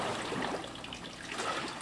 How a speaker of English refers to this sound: It's a hydraulic wave maker. This thing, all it does is push it back, push the bulkhead back and forth, and it generates waves, as you'll see.